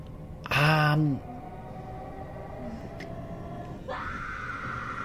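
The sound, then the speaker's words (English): In a TV show clip, a woman lets out one short, loud scream at someone who appears to be in a wheelchair near the start, then it cuts off, leaving a steady low background rumble with a faint rising hum toward the end. “was just screaming a lot.”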